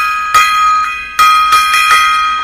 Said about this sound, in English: Gong solos there.